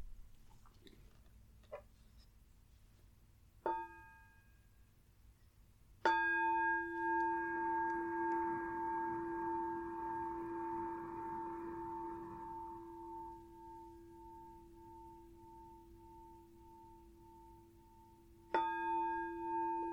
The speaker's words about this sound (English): I'll start with 3 sounds of the bell.